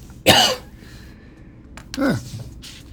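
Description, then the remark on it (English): Two forced, exaggerated fake coughs, the first sharp and loud, the second, after a pause of over a second, a bit lower and throatier. “Well, I'm glad to hear this fake cough is back in the mix again, too.”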